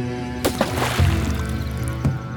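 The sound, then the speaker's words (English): A thrown leg of mutton splashes into a river, followed by a few brief sloshing bursts over a steady low hum. No one speaks. “The mutton leg broke through its surface with a splash and disappeared from sight.”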